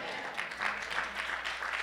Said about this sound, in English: Come on, it's a good place to clap. Everybody should clap on that one.